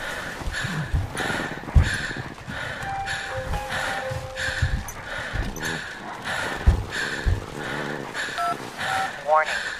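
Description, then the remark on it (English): Short electronic keypad beeps sound in quick succession as a number is dialed, with tense voices and movement noises underneath and a brief rising tone near the end. “Try one more time to use the phone.”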